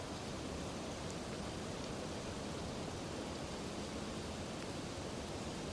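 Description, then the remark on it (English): Steady rain falls without pause, a dense, even hiss spread across the whole range with no distinct drops standing out and no voices. “In actuality, it's just like this rain.”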